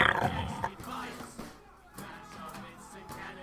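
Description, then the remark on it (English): A person imitates a boar's grunt: a loud, rough snorting burst, followed by several lower, growly guttural grunts trailing off over a few seconds. “Oink, oink to you too, piggy.”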